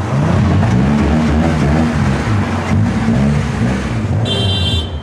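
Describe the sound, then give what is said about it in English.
A car engine revs loudly and continuously in a car park on a Friday evening, its pitch rising and falling in waves, with a brief high whine near the end. “So you come in, give her a wee, you pull in there and rave it pure loud, and then they'll be all right.”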